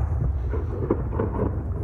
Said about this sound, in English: Explosions light up the Gaza night sky as Israel expands its air and ground activity.